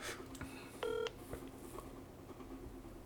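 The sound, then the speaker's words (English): A single short telephone keypad tone beeps clearly as a phone number is dialed, lasting about a quarter second, over a low steady background hum with a few faint clicks and no talking. “I feel like this number's been disconnected.”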